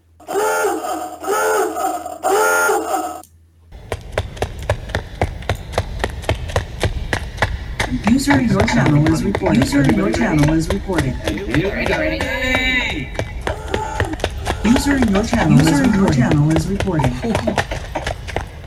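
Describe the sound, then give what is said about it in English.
A sound effect of running feet, played at the press of a button: rapid, steady pattering steps that carry on loudly for about fifteen seconds, with wordless vocal sounds riding over them, after a short tonal opening. “And we've got about half a minute when I press this button, and we have the sound of running feet.”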